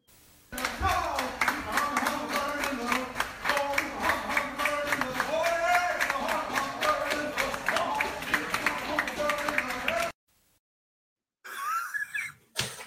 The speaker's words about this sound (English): making a bunch of older women clap for me